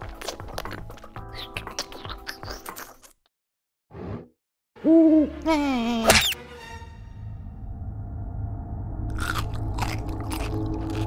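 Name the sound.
owl hooting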